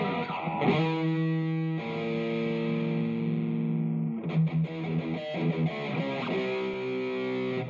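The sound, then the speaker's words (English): Sustained, distorted electronic tones drenched in reverb, with layered notes shifting pitch a few times and a washy tail between them; loud, with no voices. “If I turn off the reverb.”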